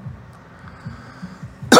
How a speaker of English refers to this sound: Sorry, I'll stop coughing in about 4 to 6 minutes.